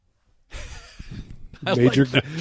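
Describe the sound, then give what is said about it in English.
A breathy, hissing sniff lasting about a second, followed by a short voiced vocal sound, as if someone demonstrates a sniff. “The sniff, or if you got glasses, push up the glasses at the same time.”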